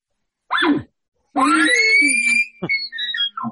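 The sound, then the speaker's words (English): A bull elk challenge scream, given back at an oncoming bull during an elk hunt, rings out alone: a brief rising squeal, then a long, loud, piercing whistle that climbs and holds before breaking into a few rough, grunting chuckles. “Oh, yeah, but hit with the scream, the challenge.”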